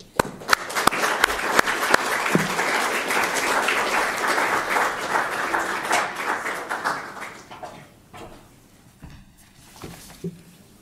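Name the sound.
audience applause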